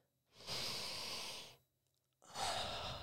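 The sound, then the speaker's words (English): A slow, deep breath drawn in through the nose and released out through the mouth, loud, with a pause before a second long exhale begins; no talking. “You know, the most simple way to get into it is breathing big long breaths in through the nose and out through the mouth.”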